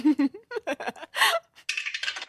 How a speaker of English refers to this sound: It's always had a Jurassic design, and you are just the first Jurassic cast member to ever use it. How dope is that? You get three rolls on this glorious dice tower, and whatever we roll, that's what we start with here.